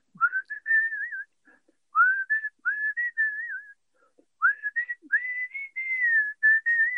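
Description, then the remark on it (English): A person whistles a clear, lively melody in several phrases separated by short pauses, with pitch sliding and warbling between notes. No one speaks. “You've probably been asked a million times, but can you give us a quick blast of the whistle now? A quick whistle?”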